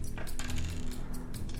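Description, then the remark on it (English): Dice are rolled across a table in a quick burst of sharp clicks and rattles, settling over a second or so. The sound is moderately loud, with no voices. “I'm going to try a different set of dice.”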